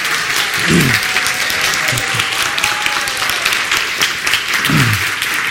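Sustained audience applause, a dense, even wash of many hands clapping throughout, with a few brief low vocal sounds rising from the crowd under it.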